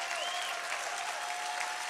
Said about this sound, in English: Clap your hands and shout like you're catching this thing.